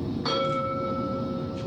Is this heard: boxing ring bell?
yes